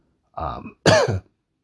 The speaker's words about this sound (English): why am I coughing so much? Oh, man. This is annoying.